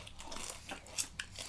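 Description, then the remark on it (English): Crunching of caramel-coated popcorn, a few sharp, crackly bites at a steady chewing rhythm, with two louder snaps standing out near the end. No one talks. “It's got a lot more crunch to it.”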